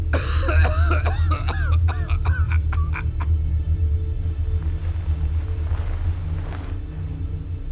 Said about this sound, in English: I fell asleep watching Atlanta and woke up again to the sound of my neighbor violently coughing.